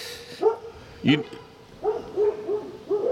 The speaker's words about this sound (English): The dogs are going to bark. I think the dogs are going to bark.